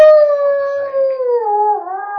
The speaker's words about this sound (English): A beastly howl fills the room, chilling you to the bone.